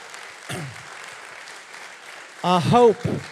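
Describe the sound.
Steady crowd applause fills the whole stretch, a dense even patter of clapping, with a short vocal cry early on and louder voices or cheers rising over it near the end.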